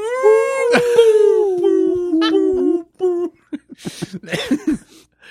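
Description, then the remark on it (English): A person imitates whale song with a long, wavering moan that rises and slides for about three seconds, then breaks into short, choppy bursts of laughter. “Do the whale.”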